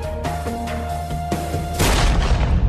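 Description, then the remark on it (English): A small-caliber pistol shot, fired by Richard Beasley at Tim Kern in a wooded area, cracks over a steady low musical drone, with a couple of sharp clicks before it and a sustained burst of rough noise afterward. “Brogan Rafferty recalls hearing a pop”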